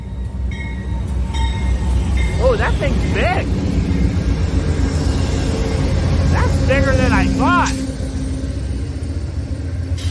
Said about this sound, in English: Oh yeah, and they are loud. You may not hear me, but if you're watching me on YouTube, there's the Amtrak train.